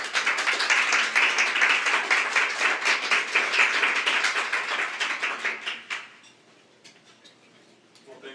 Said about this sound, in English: So give them a nice warm applause and welcome.